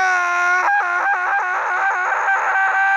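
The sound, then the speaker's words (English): A man lets out a loud, shocked scream as he steps outside into the garden after dinner: a high sustained cry lasting about three seconds that wavers and breaks into short pulses toward the end. “They step outside, and Mr. Burton screams.”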